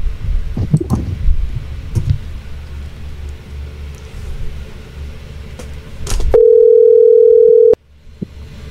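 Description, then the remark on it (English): A single steady electronic ring tone on a phone line sounds for about a second while a call is placed to a Google Voice line, following quiet rustling and clicking handling noises. No one speaks. “let me try the 803 again. And if he doesn't answer, I'll call him on my phone and tell him to pick up”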